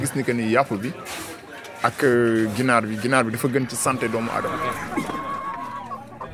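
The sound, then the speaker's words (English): Chickens for sale at a market cluck and squawk in a busy setting, their sharp, rising calls repeating irregularly over a constant murmur of human voices and crowd noise. “I've sold 29 chickens so far today.”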